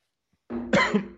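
Sudden harsh coughing erupts close to the microphone after silence, a strained throaty burst followed by a second sharp cough, like someone sputtering after a drink went down the wrong way.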